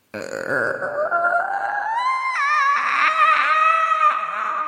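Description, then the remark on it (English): A voice imitates a creaking spooky door: one long, strained, croaky groan that slowly rises and wavers in pitch for several seconds, loud and steady, with no talking. “Your sound effect of a spooky door was very good.”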